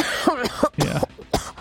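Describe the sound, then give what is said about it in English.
A person lets out a short run of wet, spluttering coughs, about four throaty bursts in quick succession, fairly loud, with no talking around them. “lets out a wet cough.”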